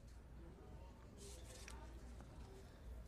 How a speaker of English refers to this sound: But all we hear here is Howard's fingers and rings on that stone. It's totally lifeless for him.